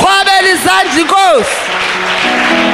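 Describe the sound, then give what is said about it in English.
A crowd claps for the Lamb of God in a dense, continuous wash while a voice shouts out with swooping pitch, then sustained low tones hold beneath the clapping. “Come and clap for the Lamb of God.”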